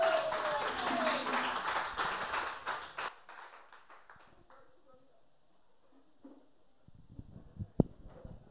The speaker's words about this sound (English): And let's give them all a big round of applause for being brave and coming forth.